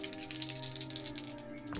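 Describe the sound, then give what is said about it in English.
Dice clatter and rattle across a hard surface in a quick burst of bright clicks, settling after about a second, with a low steady hum underneath and no talking; the roll comes up low. “Okay, I rolled pretty low on the dice here.”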